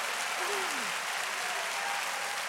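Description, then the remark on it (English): A crowd claps their hands in praise to God with steady, dense clapping that fills the whole moment, with a brief rising vocal tone like a faint cheer or hum audible beneath the hand claps. “If you love the word, clap your hands and give praise to God.”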